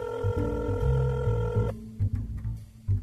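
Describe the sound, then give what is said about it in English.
A phone line rings with a steady electronic tone for under two seconds as a call is placed from a camera phone, then cuts off, leaving a low background rumble and faint clicks. “Now to call up the pink elephant and reveal to Night Night's greatest enemy his secret identity.”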